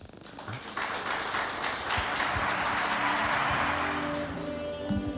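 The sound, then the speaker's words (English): Steady crowd applause welcoming the hospital manager at a facility event, a dense wash of many hands clapping that swells quickly and holds at a fairly loud level for several seconds, with a faint tonal hum underneath and no speech. “And without much ado, let's give a warm round of applause to Fabian Bennett, the hospital manager, to welcome everyone in his house.”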